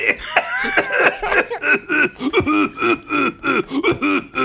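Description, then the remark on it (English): Fairly loud giggling in quick rhythmic bursts that grows harsher and breaks into a run of short coughs toward the end, with no speech. “He still has the exact same, but it turns into coughing at the end.”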